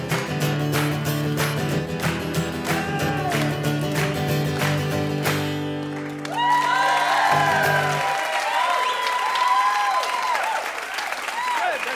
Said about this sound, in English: Good clapping. Major clappage.